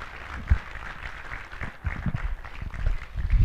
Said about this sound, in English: Somebody, will you do me a favor right now? Will you give the Lord a clap offering of praise right now? Thank you, Jesus.